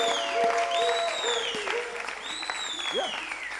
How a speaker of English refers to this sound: So in our church here, yeah, if you want to clap, clap your hands.